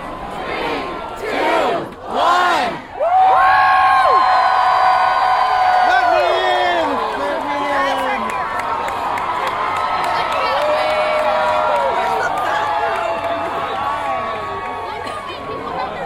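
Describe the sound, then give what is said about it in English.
A large crowd yells and cheers loudly, a dense wall of overlapping shouts and whoops that swells after a few opening cries and keeps going steadily to the end. “People are yelling, but I'm not moving.”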